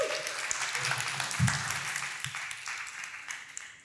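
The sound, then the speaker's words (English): An audience breaks into applause for a discussion panel of a memoir writer, a storyteller and a story and innovation expert before the talk begins: a dense, steady wash of many hands clapping at an even, moderate level for the whole few seconds, with a faint low murmur underneath. “Can we have a round of applause for them before we begin?”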